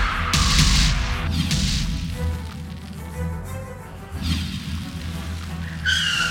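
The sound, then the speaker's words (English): A heavy spaceship lands on an airfield in London with a loud thud, then scrapes and skids along amid a deep rumbling roar, with a few more harsh screeching bursts before it settles. “He lands the spaceship with a thud.”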